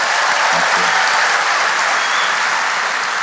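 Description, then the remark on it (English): Steady, loud applause from a large audience at the town hall for Jeffrey Toobin, a dense wash of clapping hands that holds at an even level throughout without a break or any talking. “I have a couple of final words, but before I do that, everyone, big round of applause for Jeffrey Toobin.”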